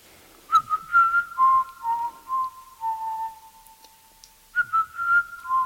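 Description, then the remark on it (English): Someone whistles a short, made-up wandering melody, the clear pure tone hopping between a few pitches in phrases, with a brief pause before a final cluster of notes. “I've made up a tune for you. Would you like me to whistle it for you?”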